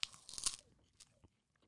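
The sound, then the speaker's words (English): A crisp crunch as a snack is bitten, a burst of brittle cracking followed by a couple of softer chewing crunches, with no talking. “Why did that crunch a little bit?”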